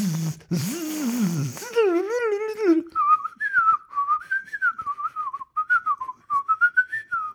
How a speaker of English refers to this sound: Yes, I was trying to whistle Flight of the Bumblebee, which is one of the most difficult things to whistle.